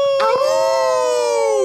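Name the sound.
people imitating wolf howls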